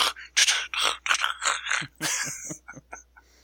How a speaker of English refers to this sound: that might be me breathing. I don't know.